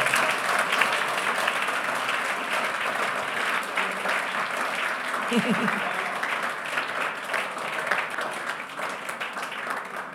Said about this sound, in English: If you are blessed, it won't be bad at all to clap your hands.